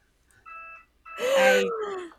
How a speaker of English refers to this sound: That was so bad I set off some sort of alarm. Good. That was the, hey, stop it alarm. That was the bad comedy alarm.